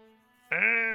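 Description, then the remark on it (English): A human voice mimics a sheep or goat bleat, starting with a soft hum that jumps into a loud, nasal, sustained "baa". “There's even actually, like, in the distance, there's a couple of goats and other sheep, and they kind of look up at her, like,”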